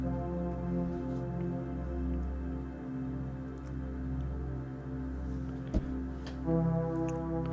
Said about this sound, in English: A boat horn.